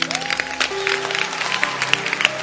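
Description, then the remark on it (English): An audience standing and clapping for the word of God, dense overlapping hand claps forming a steady wash of sound, with a sustained organ-like tone running underneath. “I want to ask you to stand to your feet and clap your hands for the word of God.”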